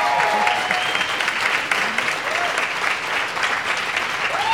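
A crowd applauds a musician steadily, the dense clapping sustained at an even loudness throughout, with a few faint cheers and voices rising briefly through the noise.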